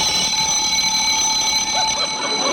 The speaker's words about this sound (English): I must have hit the button on my alarm clock.